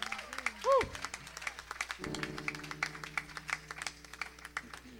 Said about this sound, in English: Somebody give the Lord a good hand clap.